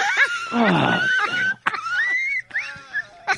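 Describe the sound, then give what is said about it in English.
A baby elephant squeals and trumpets in a run of high, wheezy, wavering cries, loud and strained, with short breaks between bursts and no talking. “He done brought a baby elephant in here.”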